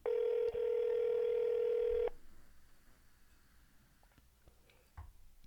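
A phone line ringing through the earpiece: one steady, loud ring tone lasting about two seconds, then a quiet pause with faint background clicks and no one picking up.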